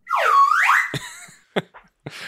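A slide whistle swoops down in pitch and then glides back up in a bright, loud comedic wail, followed by three short percussive knocks.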